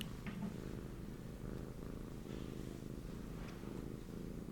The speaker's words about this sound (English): if you can't stop purring, you're gonna have to go out. You're too loud.